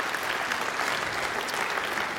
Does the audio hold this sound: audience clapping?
yes